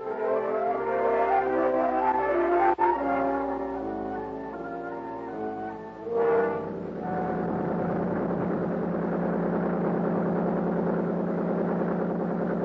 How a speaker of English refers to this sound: The big 35 on Buster's boat pulled us up the lake at an easy 39.